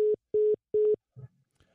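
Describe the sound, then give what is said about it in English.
A dropped phone call: three loud, steady telephone tones pulse at an even rhythm, then the line goes quiet except for a faint, low muffled sound. “we just lost his phone call.”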